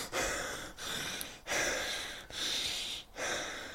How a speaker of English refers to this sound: There's a bit of deep breathing there for you guys.